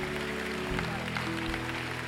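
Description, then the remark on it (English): An audience gives the Lord a clap offering in a steady, dense wash of applause, with sustained low instrumental tones held underneath throughout. “Go ahead, give the Lord a great clap offering.”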